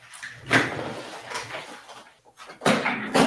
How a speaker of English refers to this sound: You know what? Let me shut this door real quick. Hold on.